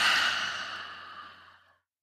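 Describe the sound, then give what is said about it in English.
A single long, breathy exhale through the mouth during a guided breathing exercise, following three quick sniffs in through the nose. It is loud at first and gradually fades over almost two seconds before stopping. No talking is heard. “Inhaling three quick sniffs and exhale with your mouth.”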